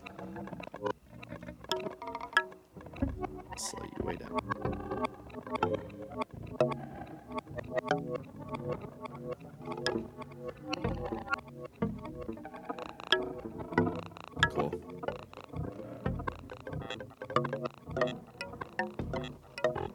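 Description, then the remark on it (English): A synth signal run through a volume-modulating effect module, one of a series of modules made like guitar pedals, pulsing and chopping in a steady, fast rhythm for the whole stretch, with dense tones swelling and cutting in and out, fairly loud. “like turns the volume, like, you know, modulates the volume and everything, and they made like a series of modules almost like a guitar pedal.”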